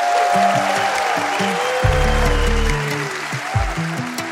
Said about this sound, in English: This is where we applaud.